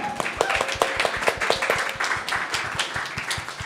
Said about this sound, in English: So yeah, pretty amazing panel. Can we just give everyone a round of applause?